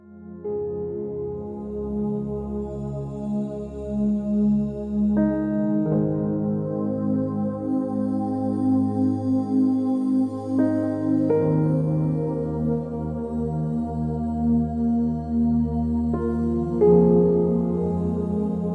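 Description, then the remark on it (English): A blender blends a smoothie continuously for nearly twenty seconds, its steady loud motor whine shifting pitch a few times as the contents churn, with no one talking. “I'm gonna close the lid and I am going to blend it away.”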